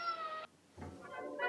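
A cat meows twice: a bright, steady meow, a short pause, then a second lower, rougher meow that rises toward the end. No talking.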